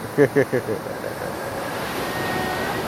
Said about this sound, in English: As you guys can hear in the background, the waves of the ocean is popping off of what's going to leave.